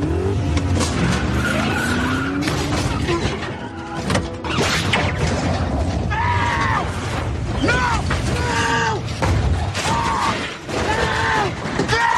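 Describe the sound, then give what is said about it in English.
Loud, continuous tire squeals and skidding from several cars, with rising and falling screeches over a roaring engine rumble, like a frantic chase. “Dom, like, flips on all the NOS. He floors it. And he takes out Roman, flips him over.”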